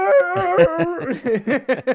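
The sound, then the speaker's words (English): A person imitates a howling dog, starting with a long wavering howl and then breaking into four or five short, rising yelps in quick succession, loud. “Like, it just howls when another thing howls, right?”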